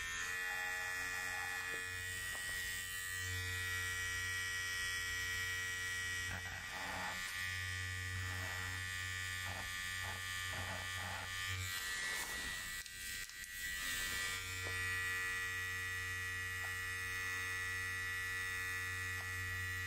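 Electric hair clippers buzz steadily for the whole stretch as they shave the sides of a head during a haircut, their motor tone dipping and shifting briefly as they move across the head, with no talking.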